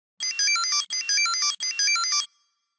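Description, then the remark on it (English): Three quick bursts of bright electronic beeping melody, each about two-thirds of a second, played clearly and alone: the chirpy tune of a Tamagotchi handheld virtual pet. “Is it a Tamagotchi? You got it.”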